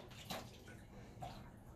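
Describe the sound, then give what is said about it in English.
A man pours liquid onto a hard floor between the toilet and the bathroom, a steady faint rushing splash with two brief louder gushes, heard quietly. “Joe, he's pouring it like.”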